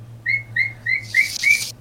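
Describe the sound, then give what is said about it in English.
A pet bird whistles five quick, evenly spaced chirpy notes in a bouncing, laugh-like rhythm, fairly clear, with a soft hiss rising near the end over a steady low hum. “And my bird is laughing at us.”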